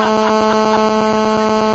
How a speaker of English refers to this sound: Careful, sounds like static.